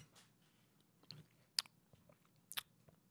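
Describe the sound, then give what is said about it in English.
Quiet mouth sounds of chewing, with a few sharp wet smacks and clicks spaced irregularly over a low steady background hum, no talking. “Like, just chewing air looking at us.”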